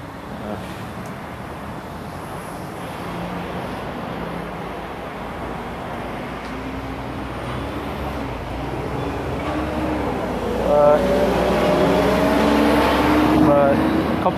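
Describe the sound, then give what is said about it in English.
A city bus arrives on the other side of the road: a steady low engine rumble swells over the final seconds, with a whining mechanical tone rising above the traffic noise. “Ah, the city bus is here, but on the other side, not the one I want to take.”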